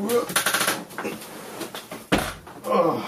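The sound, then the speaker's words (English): A door shuts with a single solid thud partway through, fairly loud, during a power cut in total darkness, while people talk indistinctly before and after it. “Close the door if you want.”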